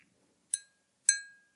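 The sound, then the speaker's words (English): A pen taps a whiskey glass twice, about half a second apart, like a small bell. Each bright, high clink rings briefly, and the second, louder strike lingers longer before fading into silence. “I need two actual different bells and not just a whiskey glass and a pen.”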